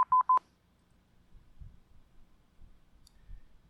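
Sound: morse code beeps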